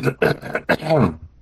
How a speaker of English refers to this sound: I was actually clearing my throat.